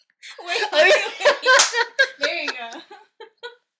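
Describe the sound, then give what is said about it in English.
Hands slap together in high fives during a show, a few short smacks mixed in with voices and light laughter, followed by a couple of quick, softer taps near the end. “That was the awkwardest fucking high fives of all time.”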